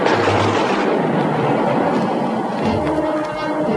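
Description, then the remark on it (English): A thunderstorm at sea, heard as a loud, unbroken roar of wind and rain with a deep rumble swelling underneath. It stays steady throughout, and no one speaks. “Thunderstorm. It is building in intensity.”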